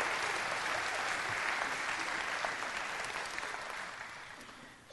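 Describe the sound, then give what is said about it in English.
Audience applause at a church service, a dense, steady wash of many hands clapping that holds loud for several seconds and then gradually tapers off, with no voices standing out. “Would you guys give my friends a round of applause?”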